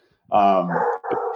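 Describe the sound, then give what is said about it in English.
A dog lets out a loud bark that stretches into a short howling whine, followed by a second drawn-out vocal bark, all within about a second. “And there's my dog saying, what's up?”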